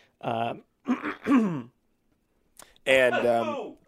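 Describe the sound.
A person coughs and clears their throat in a few rough, voiced bursts, three in quick succession, then a brief pause before a longer, louder hack.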